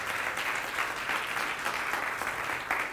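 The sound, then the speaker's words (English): An audience gives God a hand clap, clapping together in a steady, dense wash of applause, loud and continuous from start to finish with no voices standing out. “Now give God a hand clap.”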